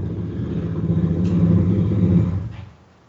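A motorcycle engine rumbles past with a steady, low droning tone that swells to a peak and then fades away over about three seconds. No one speaks.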